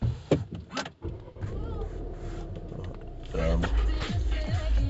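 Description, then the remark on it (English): A car engine is revved, its loud low rumble building and surging in pitch toward the end, with muffled voices and rustling in the background; the driver revs the car to stop kids from being near it. “I just revved up the car, stopped these kids from being near my car.”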